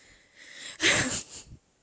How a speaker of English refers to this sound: It's because I've just eaten. Clear my throat.